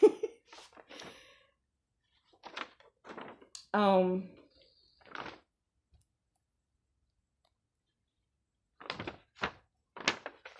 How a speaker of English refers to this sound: I'm turning pages, so bear with me.